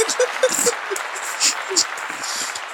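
A short round of applause: dense, steady clapping for a few seconds at a fairly even loudness, with a couple of brief high whistle-like chirps and low murmuring underneath.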